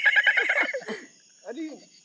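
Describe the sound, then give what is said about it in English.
A person imitates a dolphin with a loud burst of high, squeaky chattering in rapid pulses, then a short pause and one brief, softer warbling squeal. “Do a dolphin noise.”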